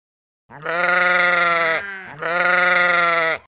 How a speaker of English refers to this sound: There it is again. I listened sadly as the mournful bleating of a sheep drifted up from the apartment terrace below us. Cringing, I closed the window. Still hearing the muffled bleating, I scurried out of the kitchen.